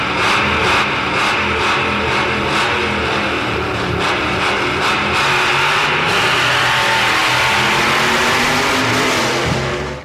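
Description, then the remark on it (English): A DeLorean car engine revs loudly and steadily for about ten seconds, its pitch climbing and surging in continuous bursts with no voices over it. “Are you telling me that you built a time machine out of a DeLorean?”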